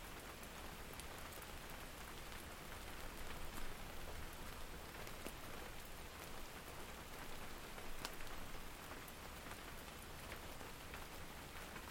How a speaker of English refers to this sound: So, sweet rain, gentle thunder, thank you so much. Thank you for your gifts and for your warnings.